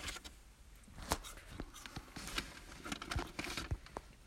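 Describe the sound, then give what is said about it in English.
Someone munches on fries with irregular, crackly chewing and crinkling bursts, a steady stream of sharp snaps and rustles with no talking. “Dude, you're munching on those fries.”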